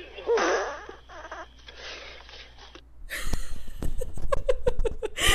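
A run of loud, blurting farts comes in rapid succession after a stretch of muffled, low-fidelity breathy snorting, played back from a clip of a classic movie.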